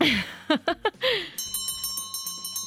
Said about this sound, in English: Oh, ladies and gentlemen, there's the closing bell.